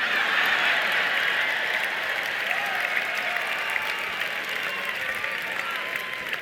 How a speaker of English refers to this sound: Here's one that you won't clap up as much.